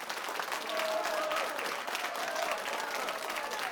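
Sustained crowd applause, a steady dense wash of clapping holding at an even, fairly loud level throughout, with faint tonal whistles or cheers poking through.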